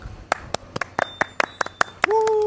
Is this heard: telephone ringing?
no